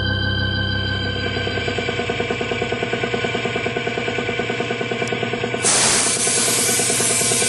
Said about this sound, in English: Give it another shot of paint over here